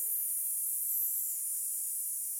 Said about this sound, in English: So here is my hand, I'm breathing out. Breathing in, and a long S.